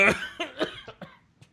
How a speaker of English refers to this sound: Excuse me. I can't laugh too hard. I'll start coughing.